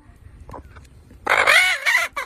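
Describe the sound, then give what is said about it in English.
A chicken named Francis lets out a loud burst of squawking clucks, a chicken 'laugh', after a quiet start, a few harsh calls running together before cutting off abruptly. “That's a beautiful fucking chicken.”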